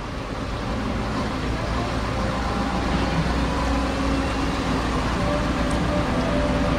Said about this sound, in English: We're outside the St. Louis Composting headquarters. We've got all kinds of trucks and everything else going on.